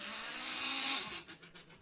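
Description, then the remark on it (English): A car pulls up with a rising engine rush that peaks and cuts off, followed by a quick series of short clunks as a door opens and the driver gets out before the car has stopped. No voices. “Yes, I got out of my car before it stopped.”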